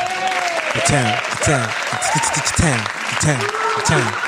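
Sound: round of applause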